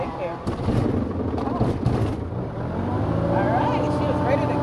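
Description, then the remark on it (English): The single engine of a Cirrus SR-20 four-seat propeller plane, started by a student pilot for a training flight, sputters to life with a few choppy bursts, then settles into a loud, steady roar whose droning tone climbs slightly as the engine revs. “firing up the single engine of this four-seat prop plane.”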